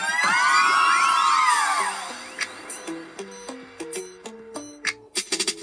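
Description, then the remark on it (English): A crowd of girls screams loudly for about two seconds, many high voices overlapping, before fading out as a bright, plucky melody takes over. “All of the girl them, I wanna hear you scream.”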